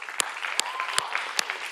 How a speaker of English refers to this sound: If you are serving in any area of our church, would you guys lift your hand and let us just applaud you for a moment? Come on, lift them up.